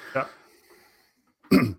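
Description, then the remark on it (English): Two short coughs, a lighter one followed after a brief quiet pause by a louder, harsher one, from a person who has had a cough all week. “I've had a cough all week, and it's finally decided to come back again.”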